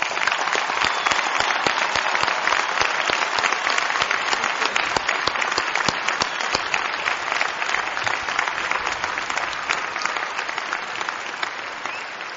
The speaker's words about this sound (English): Thank you, President Clinton, for your thoughtful, your wonderful, and your inspiring words to our graduates. You have truly made this a very memorable commencement. Let's do one more round of applause for President Clinton.